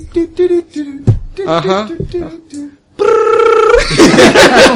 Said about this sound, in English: The police station. You jump as the police phone starts, like the phone goes off.